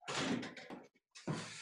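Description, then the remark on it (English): A back door being shut: a few seconds of scraping and clattering, a brief quiet pause, then another loud burst as it closes. No one speaks. “I've just gone shut the back door because that'll okay. subdue it quite a bit.”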